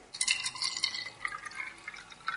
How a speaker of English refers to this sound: So we take our egg, a nice free-range egg, going to put this into a cup or a jar, and now we're going to pour on white vinegar.